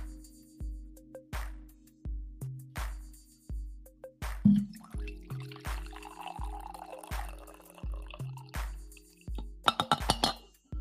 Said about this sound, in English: Angry coffee pour to finish the stream. Angry coffee pour.